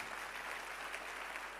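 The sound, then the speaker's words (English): A church audience applauds steadily, clapping for the sick, a dense, even wash of many hands clapping at once with no pauses, holding at a constant level for the whole stretch. “Your clap for the sick in the house.”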